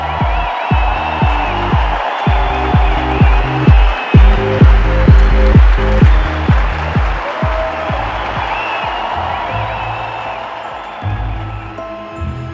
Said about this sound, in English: Emerald could hear the crowd waiting for her. They were making a lot of noise, and she knew they were expecting something.